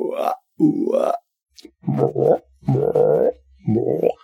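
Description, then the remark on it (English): A man's voice imitates a frog, making five low, guttural croaks in an uneven rhythm with short pauses between them. The croaks are pushed low rather than inhaled and are moderately loud. “Somebody help me find a frog noise voice. You don't want to do an inhale, you want to push low”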